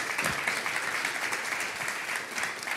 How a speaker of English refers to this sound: And guys, it is truly, yeah, we can clap for that. Yeah.